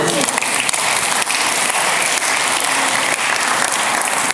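An audience claps steadily, a dense wash of many hands applauding loudly and evenly for several seconds without a pause.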